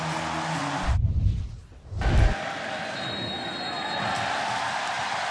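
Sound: stadium crowd roaring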